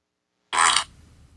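A single loud, short fart sound effect bursts out of silence, noisy and raspy, then drops away into a faint low rumble for a moment. No one speaks.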